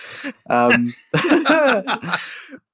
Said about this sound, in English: You got the disease in you? I got the zombie cough.